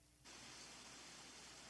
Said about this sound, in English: Wait, what's happening? Hello? Gone. Oh, I hear some weird static.